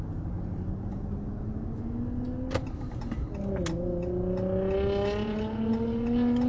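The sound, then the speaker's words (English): A small, zippy sports car, low to the ground, revs upward in rising pitch, dropping briefly at two quick gear shifts before climbing again, loud and steady over a rumbling road noise, with no talking. “Those little zippy cars that make those, they're really low to the ground, they make those noises.”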